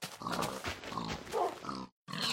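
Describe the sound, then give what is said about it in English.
A pig grunts and snorts loudly in a continuous, wet-sounding stretch, breaks off for a brief moment of silence, then starts grunting again. “That's a moist pig.”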